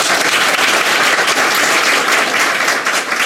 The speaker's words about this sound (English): Please join me in a round of applause for Nancy Pfund.